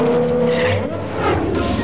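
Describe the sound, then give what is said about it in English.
A race car with Jules Verne in it roars loudly and steadily while tires skid and squeal, a dense, continuous burst of motor noise lasting a couple of seconds. “You put Jules Verne in a race car?”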